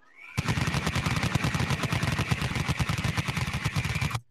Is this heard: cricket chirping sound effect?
no